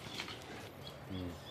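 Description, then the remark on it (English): A tieke (saddleback) on an island calls with a few faint, high chirping notes spread across the moment, over a low background hum, with a brief low voice-like murmur near the end. “There's the tiaki now. Yeah, you can hear it.”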